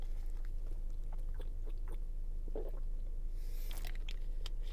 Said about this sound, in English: Sorry, I had to replenish with some water